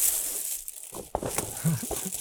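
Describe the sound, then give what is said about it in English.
Crinkly rustling of a paper gift bag from Kif being handled and opened, with irregular crackles and crunches over about two seconds, and a brief low vocal sound partway through. “We're gonna open it live. Hear the paper crumble.”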